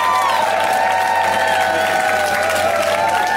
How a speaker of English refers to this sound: Keep clapping like you heard of me.